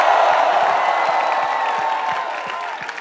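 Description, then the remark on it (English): An audience claps their hands and shouts for Jesus together in a dense, steady roar, with sharp individual claps popping through a bright wash of cheering voices that stays loud throughout. “Clap your hands and give Jesus a shout.”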